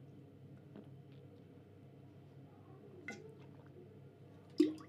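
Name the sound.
person sipping water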